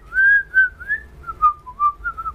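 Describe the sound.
A person whistles a short, wavering tune of several breathy notes, fairly loud, with slight pauses between phrases and no talking.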